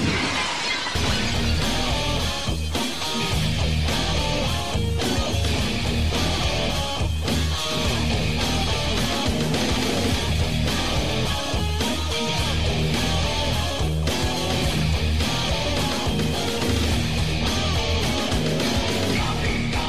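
A loud, dense rock wrestler's entrance theme, his third theme in a week, plays steadily for the whole stretch, with crashing, shattering-glass-like hits woven into a driving beat and no voices over it.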